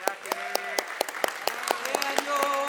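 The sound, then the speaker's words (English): An audience claps to welcome a group of ninth-grade students who stand up, a steady patter of many hands with sharp individual claps standing out, while voices call and cheer over the applause. “If you don't mind, can you just stand so that we can welcome you and clap?”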